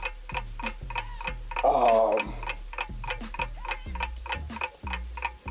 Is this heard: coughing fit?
no